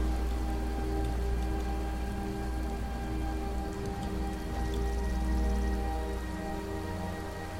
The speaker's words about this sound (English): It's like, how often do I see it storming here in Skyrim?